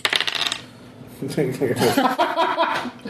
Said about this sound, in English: And I roll a two dice, right? So yes, 2d6. 2d6.